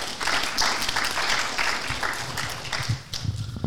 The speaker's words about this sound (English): Let's give them a round of applause and thanks for being here.